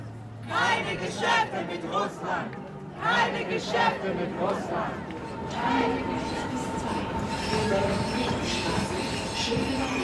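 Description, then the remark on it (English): Busy train station ambience at Berlin's central station, the Hauptbahnhof, in Germany: a steady rumble of rail traffic with trains pulling in, wheels squealing in long high tones, under an indistinct murmur of voices throughout. “Berlin's central station, the Hauptbahnhof, is at the heart of the city's refugee welcome effort.”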